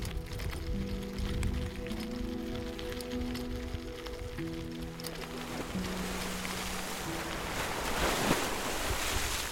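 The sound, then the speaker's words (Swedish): Steady, hissing surf washes and foams against grey rocks on a headland shore facing the sea, the frothy rush swelling toward the end, with low sustained tones humming underneath during the first half. “Här finns bara grå klippor, knotiga tallar och vågor som fräser och skummar.”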